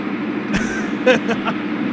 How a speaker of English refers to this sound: She's on the freeway right now. She just said she was on the freeway. Why is that car so loud?